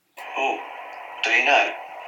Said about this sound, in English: So, without further ado, can I hear everyone's buzzers?